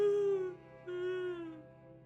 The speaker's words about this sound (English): Her cries and screams echoing through the air.